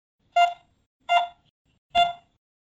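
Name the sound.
heart monitor beeping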